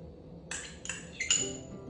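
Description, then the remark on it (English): Ingredients are dropped into a blender jar before being pureed, making a quick run of four bright clinks and knocks against the glass over about a second, with faint ringing after each, moderately loud. “So it's everything right into the blender, and then just puree it nice and smooth.”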